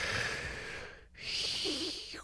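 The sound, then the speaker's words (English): A person takes a deep, heavy breath in and out, a raspy, hissing two-part rasp with a brief pause between, imitating Darth Vader's mechanical breathing. No one speaks. “I'm breathing deeply like it's a Star Wars movie”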